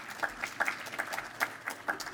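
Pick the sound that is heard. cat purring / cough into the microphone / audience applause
audience applause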